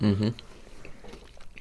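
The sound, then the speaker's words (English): A brief voiced hum opens, followed by soft, irregular crunching and chewing, a milk-chocolate-coated mint biscuit with crispy brittle mint pieces being munched in quick, uneven bites. “Very crispy pieces of brittle mint, whatever crisp mint is. Got the crunch, got the chew.”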